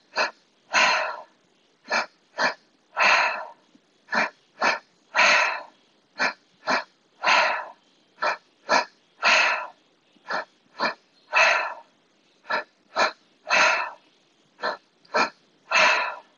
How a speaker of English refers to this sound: we're going to go ahead and get into the rhythm of the breath, and I'm going to demonstrate a couple of times